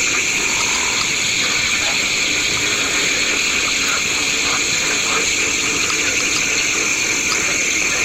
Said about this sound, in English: In Florida, the pig frog, the leopard frog, and the gopher frog, cricket frogs, and two tree frogs are all calling simultaneously.